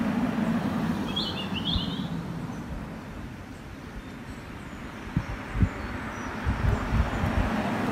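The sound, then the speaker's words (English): A short, faint burst of bird chirping rises briefly above a steady, heavy low rumble of outdoor noise in Normandy, France, with a few dull thumps toward the end and no talking. “You can hear the birds here.”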